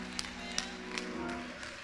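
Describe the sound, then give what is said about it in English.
A handful of scattered hand claps ring out at uneven intervals, fairly quiet, during a church service, over a steady low sustained tone like an organ holding a note. “I dare you to clap your hands.”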